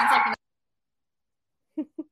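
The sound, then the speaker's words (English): Dogs being dog-sat playing roughly, going crazy over each other and fighting over a toy: a short, harsh growling burst, then a pause and two quick, mid-pitched yips in a row. “dog sitting and they're like going crazy over each other right now.”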